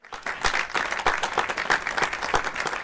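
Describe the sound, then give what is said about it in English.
A burst of applause from a small group, dense overlapping claps with a few sharper individual hand claps standing out, steady for a few seconds. “Let's give some claps to that.”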